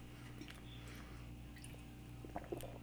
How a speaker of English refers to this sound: Yes, we're gonna take another sip of wine, and I think that's gonna wrap up today's episode too, dude.